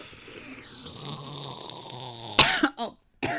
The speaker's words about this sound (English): Dude, that sounds literally identical to that cough I just had.